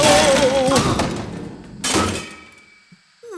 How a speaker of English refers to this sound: What? An explosion? Exploding anchovies. Explode-chovies. Anch-plodies.